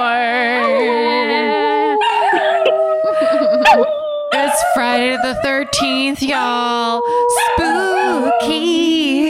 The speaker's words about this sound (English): Spooky howls.